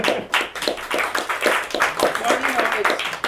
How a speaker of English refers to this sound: Listening to John and Terry, round of applause.